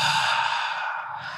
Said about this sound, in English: take a big breath in through your nose and your belly should rise. Breathe out through your mouth, belly falls.